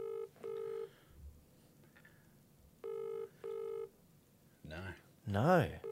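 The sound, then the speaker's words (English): An outgoing call's ringback tone repeats in a steady double-ring pattern, two pairs of electronic trills with pauses between, followed by a couple of brief bursts of voices at the end. “Don't you pick up when you see the commissioner's calling?”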